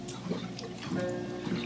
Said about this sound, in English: Gonna take some water here.